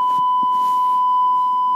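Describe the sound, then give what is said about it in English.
A steady, loud, high-pitched censor bleep holds one unbroken tone for nearly two seconds, masking a spoken word, with faint muffled sounds barely showing beneath it. “if you say that, I'm going to beep it out of every episode.”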